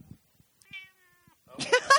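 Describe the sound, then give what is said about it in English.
Chicha, a female domestic cat, meows twice on command in the sala of La Tavola Marche Agriturismo and Cooking School in the Candeliano Valley on the morning of 1 March: a thin, fairly soft first meow, then a louder, rougher second one right after, with no talking. “Meow, Chicha.”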